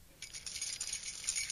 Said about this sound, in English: As he gets closer, you can clearly see that Terence is carrying a set of keys.